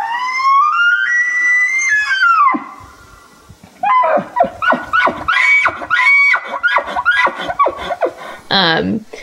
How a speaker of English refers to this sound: But it was the elk, because the elk like hang out in the campsite and they make this like bugling noise, and it kind of does sound like a haunting sort of scream.